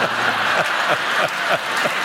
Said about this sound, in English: The salon's Roomba, clearly, you're all cheering for the Roomba. You're like, go, little Roomba.